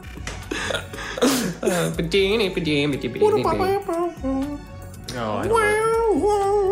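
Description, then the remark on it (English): Someone vocally imitates a sitar, humming and whining in a nasal voice with bending, sliding pitches and wavering notes, ending in a sustained, rising drone. “Me trying at this, I can't remember at this how late hour trying yes. to do a like a sitar.”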